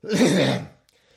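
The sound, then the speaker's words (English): A single harsh, raspy cough bursts out, lasting about half a second before trailing off into near silence. “And he just coughed all over the Balrog.”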